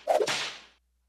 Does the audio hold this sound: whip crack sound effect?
yes